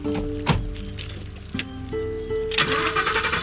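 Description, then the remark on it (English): A truck engine cranks and catches, a sharp burst followed by a steady humming idle that rises in pitch, with a couple more revving surges near the end. Fairly loud, no voices. “With the engine running, the thing changed.”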